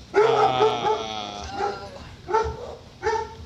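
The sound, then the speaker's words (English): Dogs barking: a long, drawn-out whining bark followed by three shorter, evenly spaced barks, fairly loud and with no talking over them. “Don't mind the dogs.”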